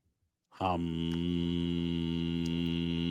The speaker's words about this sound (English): Vacuum truck. There was some backhoe drilling, breaking up concrete earlier. Two vacuum trucks within 20 paces.